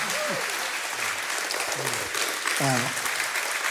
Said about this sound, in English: And as he comes, would you just please give a round of applause, a big, big, big 26 West Church applause for our new brother.